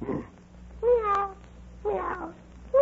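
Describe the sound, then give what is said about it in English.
A person imitates a cat's meow, two drawn-out, wavering mews with a third starting at the end, over a low steady hum and no speech. “Meow. Now what are you doing?”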